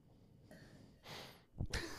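Breathing blown straight into a microphone: three rough, hissy bursts of air, a soft one, then a louder exhale, with a short thump and a final strong gust at the end.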